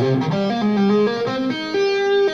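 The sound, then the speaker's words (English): A distorted electric guitar plays a short melodic phrase of sustained notes, ringing and smeared together with an echo effect, loud, with no voices. “Yeah, I like that it has the echo, so it feels like I'm. I like to play guitar.”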